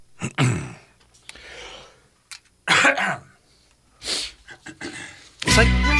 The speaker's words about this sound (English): Sorry. Well, let's try that again. Yep. I was going to say, it's like a delight to be able to cough without someone looking at you like you've got the fucking COVID.